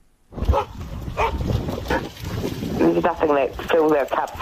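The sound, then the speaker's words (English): Several dogs bark and yelp at a doggy daycare in an excited, overlapping burst, with high whining cries rising toward the end amid busy noise. “There's nothing that fills our cups more than happy dogs.”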